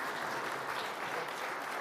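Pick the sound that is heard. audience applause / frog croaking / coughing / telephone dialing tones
audience applause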